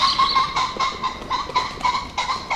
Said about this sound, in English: Well, that you will recognise, Simon, as the call of the common pheasant. They were quite the most common bird around.